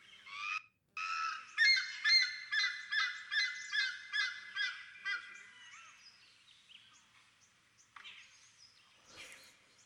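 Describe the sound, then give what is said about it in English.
A black ibis gives a loud series of about ten harsh, honking calls in steady rhythm, then trails off into fainter scattered calls, with no voices present. “So this is what a black ibis sounds like.”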